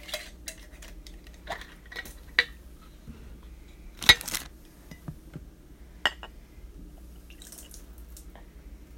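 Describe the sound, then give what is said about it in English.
Liquid pours and spills from an awkward square jar in short splashes and drips, with a brief louder gush midway and scattered glassy clinks against a quiet hum. No talking. “What, did you spill some? Or? Yeah, I've got it in an awkward square jar. I didn't pour much in this, and I don't want to pour much in.”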